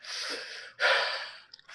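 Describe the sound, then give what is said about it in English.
Two long, forceful nose blows from a runny nose, each a harsh airy rush, the second louder, followed by a few brief snuffly sniffs. No one speaks. “I did have to blow my nose real quick too, because it was like a fountain just suddenly.”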